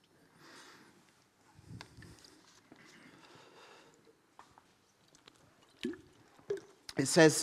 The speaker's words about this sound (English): So if you've got a Bible with you or on your phone and you'd like to read it, you can turn to Joshua chapter 20, whilst I just grab a quick drink of water.